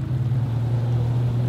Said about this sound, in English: I got out on Lake Pleasant and rode a jet ski.